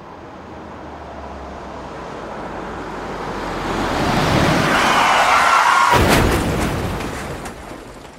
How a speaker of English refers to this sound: Oh, my goodness gracious. Listen, you hear the explosions, you hear the crashing sounds in the background.